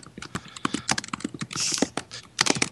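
Rapid, uneven typing on a computer keyboard: a steady run of crisp clicking keystrokes with a few heavier taps, and no one speaking.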